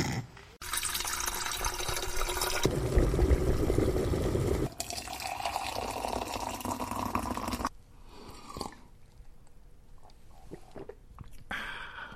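Water gushes steadily into a kettle being filled to make tea, for about seven seconds, its rushing tone shifting as the vessel fills, then cuts off, leaving a few soft clinks and taps.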